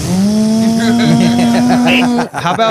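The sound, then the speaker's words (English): A voice imitates a drone buzzing over a stand-up comedy audience with a loud, steady, nasal hum that rises slightly and holds for about two seconds, then breaks off into a short burst of voiced noise. “What about the first stand-up comedy special filmed on a drone?”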